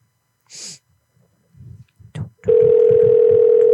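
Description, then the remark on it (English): A loud, steady telephone ringing tone on a call to the Walmart store in Easton cuts in partway through and holds unbroken to the end, following a sharp breathy burst and some soft low thumps. “I mean, I've been in Walmart when the phone's ringing. You hear it.”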